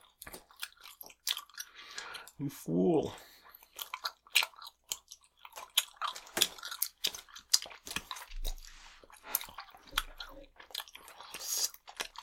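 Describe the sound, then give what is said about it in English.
Wet chewing of red cherry-flavoured bubble gum, with irregular sticky smacks and clicks throughout, fairly loud; a short spoken remark breaks in early on. “I wasn't even chewing on this cherry part. It just got sucked in the opposite end of the glob.”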